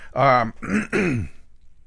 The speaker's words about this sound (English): No, I'd cough like this. Sorry. That's all right. I'm on the tail end of some cold or something.